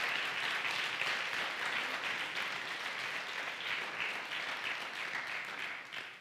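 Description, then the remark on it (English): Sustained audience applause, a dense wash of many hands clapping at a steady, fairly loud level that fades slightly toward the end. No voices stand out. “Give her a round of applause again.”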